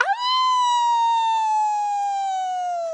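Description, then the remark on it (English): A person lets out one long, loud howl imitating a wolf in a howling contest; the tone holds steady for about three seconds and slowly sinks in pitch toward the end. “You want to have a howling contest?”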